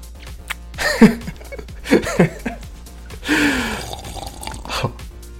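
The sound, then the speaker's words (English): Cold liquid is poured onto a person lying on a table, splashing onto their stomach and dripping in short splashes, punctuated by the person's sharp gasps and brief vocal reactions between the pours. “And you can pour it on my stomach.”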